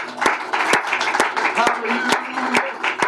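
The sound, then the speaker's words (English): An audience at a morning church service claps their hands together to praise God in a steady, even rhythm, sharp unified claps about twice a second, over a murmur of voices and cheering from the crowd. “Would you clap your hands with me and give God praise this morning?”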